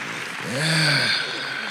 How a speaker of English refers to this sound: While you're standing, can we give Pastor Stovall Weems, his wonderful, beautiful wife, Pastor Carrie Weems, a big round of applause?